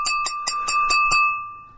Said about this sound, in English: Listen, I've got a pint glass here. I'm going to tap and make a speech. Hang on.